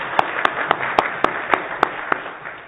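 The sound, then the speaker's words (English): A church audience applauds a 50-year anniversary: a steady wash of clapping with sharp, individual claps popping out at a fairly even rhythm, about nine in under three seconds, with no voices. “We clap for that.”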